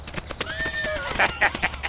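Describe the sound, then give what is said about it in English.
A horse gives a short, shrill whinny that wavers and falls in pitch, then its hooves clop in a steady rhythm of four or five sharp beats. “I'm surprised you haven't fallen to your death yet, that crazy horse of yours.”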